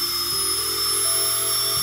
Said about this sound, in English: There was a big window in front of me, so I stared out this window at the lush trees swaying back and forth as I tried my best to relax while a giant drill entered my mouth.